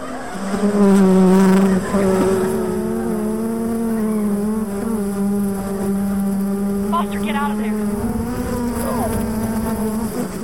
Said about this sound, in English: Oops. What was that?" "That would be the killer bees.